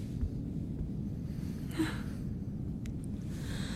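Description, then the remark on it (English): Low, breathy exhalations blend into a steady rumbling background, with a slightly sharper intake of breath near the middle. No one speaks. “I keep hearing someone. Like, breathing?”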